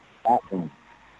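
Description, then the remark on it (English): A brief burst of radio voice plays in the background, two short muffled syllables with a hollow, echoing quality, then quiet hiss. “Somebody's got a radio or something on in the background.”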